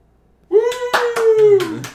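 A single person in a studio claps five or six times in quick, slightly uneven succession, a full round of applause, fairly loud, while a voice holds a long, sliding whoop underneath.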